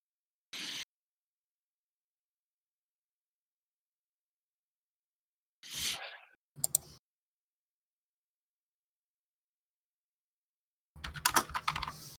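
Short bursts of computer keyboard typing, separated by long stretches of silence; the final burst is a rapid flurry of distinct key clicks. No one speaks.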